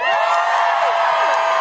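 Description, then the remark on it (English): An audience cheers loudly and steadily when asked who has seen Six the Musical, a dense wash of high-pitched screams, whoops and shouts from many voices overlapping without pause. “Could you give me a cheer if you have seen Sixth the Musical?”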